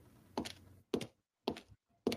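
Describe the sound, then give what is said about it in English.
An airlock opening: four heavy mechanical thunks at a steady pace, each a sharp, loud knock that quickly fades, over a faint low hum. “The sound of an airlock opening.”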